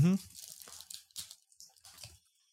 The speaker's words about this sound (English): Oh, it comes unwrapped pretty easy.